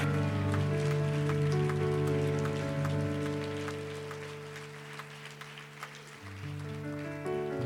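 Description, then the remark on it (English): A Zanesville audience applauds to welcome a preacher in a dense, steady wash of clapping that lasts several seconds, with sustained low musical tones holding underneath and no speech. “Would you give him a big Zanesville welcome today as he comes to preach the word of the Lord?”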